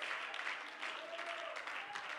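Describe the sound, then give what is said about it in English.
An audience claps together during a sermon, in a dense, steady wash of applause that holds at an even loudness throughout, with a faint sustained tone briefly rising above it, as the preacher asks everyone to clap their hands and stand to their feet. “Would you clap your hands and stand to your feet tonight?”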